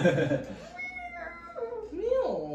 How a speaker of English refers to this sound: Meow.